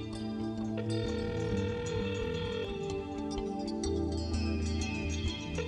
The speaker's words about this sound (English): What is that sound? The phone. Someone is trying to call him.